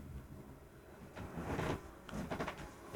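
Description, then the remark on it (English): A door opens quietly as a visitor arrives, with a soft scraping and rustling swell in the middle and a few light clicks and bumps toward the end, over faint room tone. “Oh, there's the door.”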